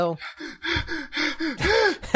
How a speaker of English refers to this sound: Heavy breathing.